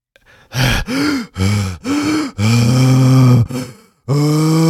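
Heavy, voiced breathing from a film's masturbation scene, a character in bed at night: about six loud, rhythmic bursts of gasping and groaning, each a strained exhale with short pauses between, the last ones drawn out longer.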